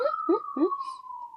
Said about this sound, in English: And the other part of it is it goes to that intentionality, like the sirens right now. Mm-hmm. There go those sirens.